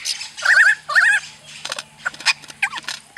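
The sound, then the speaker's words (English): A lyrebird sings a varied sequence: two loud, warbling, rippling phrases, then a run of sharp, clipped chips and short whistled notes of shifting pitch, with no talking. “I think we actually have some recordings of the lyrebird we can play here.”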